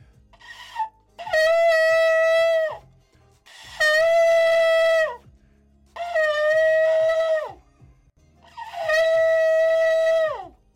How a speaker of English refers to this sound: Listen, understand this, that when the trumpet or when the shofar is blown, heaven and earth comes to attention. Everything that is living knows what that sound is.